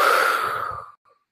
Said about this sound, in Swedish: Och då, om vi hjälper någon annan med det, så är det ofta bra att andas så det låter ganska mycket.